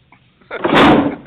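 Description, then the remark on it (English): A drawer slams shut with a single loud, sharp bang and a brief rattling tail, with no voices around it. “I guess it's just you and... me, your balls, and this drawer.”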